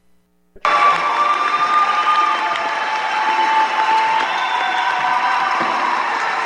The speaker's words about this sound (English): And the crowd goes wild.